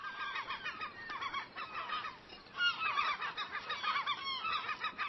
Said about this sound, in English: Yep, seagulls.